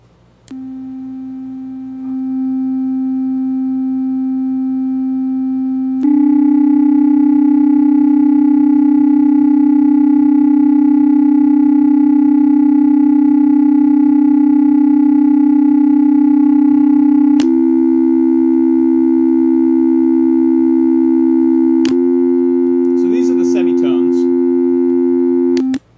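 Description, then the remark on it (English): A steady, low synthesizer sine-wave tone hums continuously, stepping abruptly to slightly different pitches a few times, with faint clicks and rustling near the end. “Waves, and then I can use my little knob here and go to triangles.”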